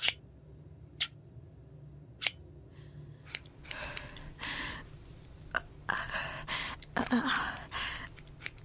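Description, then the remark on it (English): In a hotel room, scissors snip through hair as a person cuts off their own hair, starting with sharp isolated cuts spaced about a second apart, then quickening into rapid, crunchy snipping and rustling, with no voices present. “Back at the hotel room, I cut off my hair.”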